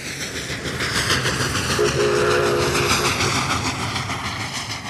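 A train rumbles steadily along the tracks with a rhythmic clatter, and a short, muted horn sounds in the middle of the passage, loud throughout with no talking.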